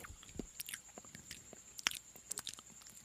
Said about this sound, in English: Dude, these things are so good. Veggie straws? I gotta stop eating them because we're gonna. I don't think people wanna hear me chew. I don't know, it's a little ASMR.